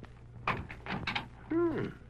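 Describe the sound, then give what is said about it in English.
A few muffled bumps and rattles, then a short creaking squeal as an unlatched house door swings open on its hinge, against a faint steady hum. “Door ain't latched.”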